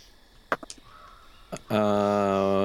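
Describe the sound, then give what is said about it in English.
After a few short clicks and taps, a person loudly imitates a bird call, holding one long, harsh, crow-like squawk until the end. “Doesn't sound like a bird, despite my best efforts.”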